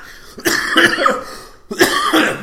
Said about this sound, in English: Sorry, I will not edit those coughs out.